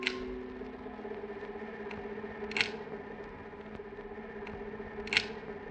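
Sharp mechanical clicks from a lighthouse lamp's rotating mechanism, three of them spaced evenly about two and a half seconds apart, over a steady low machine hum, looped from a broadcast of Escape.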